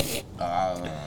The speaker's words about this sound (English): Now burping.